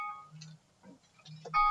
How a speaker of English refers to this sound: Luckily, that alarm is my stop ranting about this and continue reading alarm.